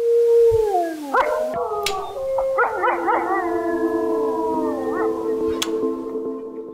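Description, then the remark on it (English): Several wolves in Yellowstone howl together in a chorus, long sustained wavering tones sliding up and down in pitch and overlapping, with a few short yips, steady throughout. “Concluding Access Utah for today, those are some wolves in Yellowstone.”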